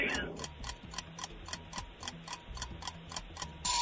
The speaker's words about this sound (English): Ah, there's the timer.